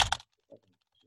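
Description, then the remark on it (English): A short burst of computer keyboard typing, a couple of quick sharp key clacks followed by a softer isolated tap, with no voices. “get the keyboard computer maestro, IT expert Mr. Leroy Mayer, and to do some typing in”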